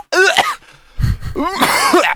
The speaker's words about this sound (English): You make sure to put in the cough.